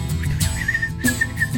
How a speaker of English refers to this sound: Is that how you call him? Yeah. You whistle?